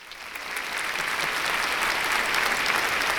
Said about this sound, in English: Another pause for applause